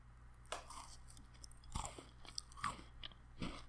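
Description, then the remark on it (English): A few crisp crunches of someone biting and chewing a thin homemade cookie, in short irregular bursts over a quiet low hum, with no talking. “I'm going to give you a crunch.”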